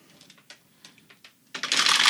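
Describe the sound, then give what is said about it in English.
A few scattered plastic clicks, then a burst of many six-sided dice (D6s) clattering and rattling together across a hard table surface, loud, rolled for sneak attack damage, continuing without any talk. “Kalman gets a sneak attack off of that, which at this level means... A lot of dice”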